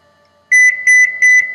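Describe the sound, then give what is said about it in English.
A quiz contestant's loud electronic buzzer beeps in a quick, steady series of short, bright tones, about five pulses in a little over a second, with no talking. “Cloud, can we hear your buzzing sound?”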